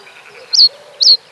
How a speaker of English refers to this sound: The birds on the Ashdown Forest, while often quite difficult to see, are really a special lot. The heathland that we have here has a rather different set of birds, which I just find fascinating.